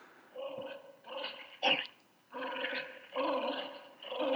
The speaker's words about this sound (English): He's doing it. Man, what a mutt. Come on, boy. Come on, Mac. Here, boy.